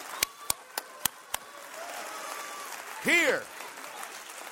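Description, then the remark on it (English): Five sharp, evenly spaced hand claps from an audience clapping in unison, followed by a quiet pause and a brief, rising-and-falling vocal exclamation. “Can I get everybody in this house to just do at least a couple of hand claps with me right now?”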